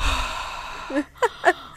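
Heavy breathing: a long breathy exhale, then three quick, sharp voiced gasps in an uneven rhythm, fairly loud against a quiet background.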